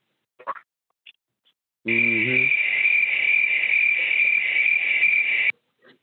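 Crickets chirp in a steady, dense high-pitched trill lasting several seconds, loud, with a brief low tonal sound at its start and a few faint clicks before.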